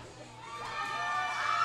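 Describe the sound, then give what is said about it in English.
A crowd roars and cheers in a dense, continuous wash of voices, with individual shouts rising in pitch above it and the noise swelling slightly louder toward the end. “A very split crowd here.”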